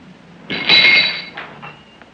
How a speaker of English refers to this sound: And I love the way that when Anna walks into Sandro's house, she throws her purse on the table and it like knocks down a bunch of shit. Yeah. That's my favorite sound.